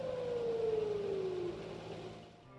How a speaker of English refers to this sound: on Yom HaShoah, the sirens start at one end of the country and slowly make their way to the other